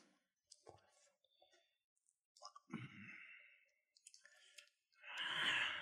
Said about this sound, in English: That gum chewing action. ASMR.